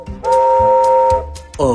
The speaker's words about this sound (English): Stafford honked his horn, and Gordon blew his whistle.